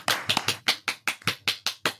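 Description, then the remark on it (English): Steady, evenly spaced hand claps, about nine crisp claps in two seconds, moderately loud, an audience applauding in rhythm for Dr. Christine, with no voices. “A big round of applause for Dr.”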